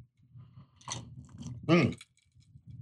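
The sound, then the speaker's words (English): Two short, wet slurping sips of Johnnie Walker Black whisky, the second louder, followed by a soft swallow against a quiet low rumble. “God, now, let me get another sip of that.”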